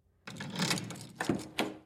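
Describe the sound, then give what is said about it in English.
A room key scrapes and rattles in a door lock, building to two sharp metallic clicks as the bolt turns. Fairly quiet, with no voices. “She tries it on the door behind her, praying it will work.”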